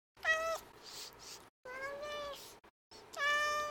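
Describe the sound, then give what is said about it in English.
A cat meows three times in a row with short pauses between, each call drawn out and clear, fairly loud, with no other sounds around it. “Kiki, our cat, really hit it on the head with that”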